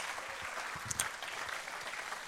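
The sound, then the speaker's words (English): An audience claps for Jesus in a dense, steady wash of applause that holds evenly for a couple of seconds, with a few sharper claps standing out briefly midway and no voices. “Why don't we give Jesus another hand clap in the house right here?”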